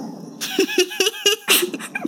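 dog barking

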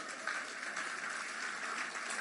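audience clapping

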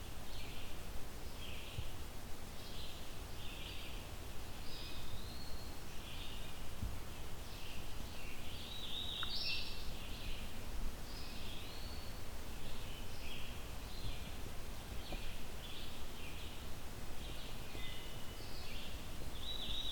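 vireo singing

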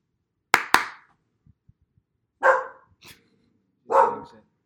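dog barking and growling

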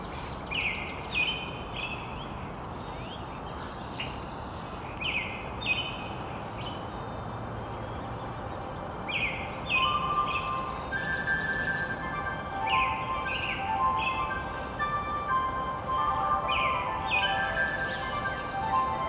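dawn chorus birdsong

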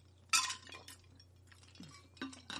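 ice cubes clinking

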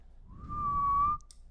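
person attempting to whistle

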